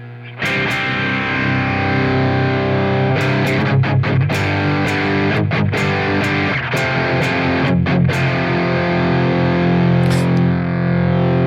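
A heavily distorted electric guitar rings out through an effects pedal running on an isolated power supply, sustaining thick, fuzzy chords with occasional sharp pick attacks and brief choppy breaks, loud with no voices.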